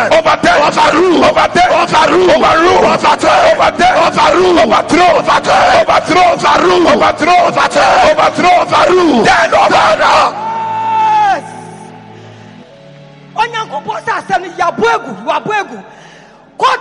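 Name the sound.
audience clapping and screaming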